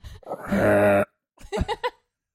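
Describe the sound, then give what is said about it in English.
A person growls a raspy, throaty snarl for about half a second, then follows with a few short guttural grunts, a loud vocal imitation of a bobcat. “Do your best bobcat.”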